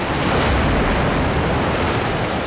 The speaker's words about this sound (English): The oyster catcher is completely dependent on this marine shoreline for nesting and food, even in winter, when waves hit these rocks with awesome force.